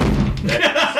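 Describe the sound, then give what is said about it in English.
A door is opened: a low bump or thud, then a short, wavering squeak as it swings, all within about a second. “And really, he's opening the door.”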